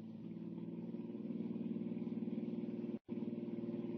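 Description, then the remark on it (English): A car engine roars at high revs in a steady, throbbing drone that builds slightly, loud, with one abrupt split-second cutout just before the end, as the car speeds toward a bridge chasing another car. “Bridge or no bridge, I'm going to catch that car.”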